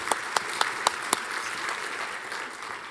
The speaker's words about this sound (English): Thanks, guys. You can clap for them. They did a great job.